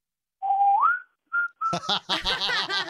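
person whistling

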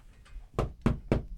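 knocking on a door

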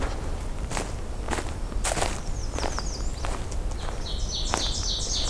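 ovenbird song

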